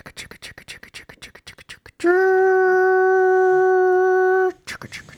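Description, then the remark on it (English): After a few seconds of quick talking, a voice imitates a passing train with one loud, steady, sustained hoot held for about two and a half seconds before the talking resumes. “Listen, I work next to a train all day, every day, for 5 goddamn days a week. It goes...”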